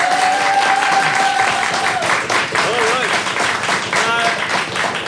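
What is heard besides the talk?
audience clapping to vote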